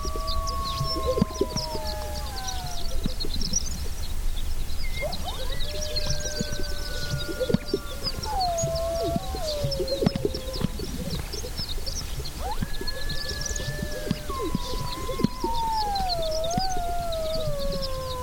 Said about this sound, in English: We leave you this week near the Owyhee Mountains in southern Idaho, just before sunrise. Jeff Rice recorded these sage grouse strutting and puffing up their chests as part of their spring mating ritual, while two young coyotes call in the distance.